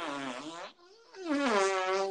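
Two loud, buzzy raspberry-like blasts of air forced by a man through cupped hands, sounding like a fart, with a brief dip between them; no talking.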